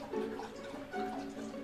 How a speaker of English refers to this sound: My dog is drinking water.